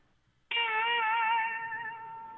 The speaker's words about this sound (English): I don't even know if that picked up. It did a little bit. So, like a cat meow, kind of.